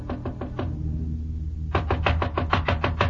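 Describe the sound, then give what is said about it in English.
Knocking on a hotel room door (Room 6, first floor, Hotel Mala): four quick raps, a pause of about a second, then a longer, insistent run of sharp knocks. Fairly loud, with no voices. “There was a light on inside the room, and I knocked on Jan Svensson's door.”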